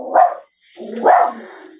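A dog named Lily barks twice, fairly loud, with the two short woofs about a second apart and no one talking over them.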